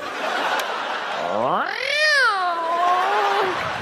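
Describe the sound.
A person imitates a cat with one long, drawn-out meow that rises in pitch and then slowly falls, fairly loud over a soft background hiss.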